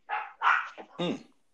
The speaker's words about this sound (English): It sounds like your dog has an opinion.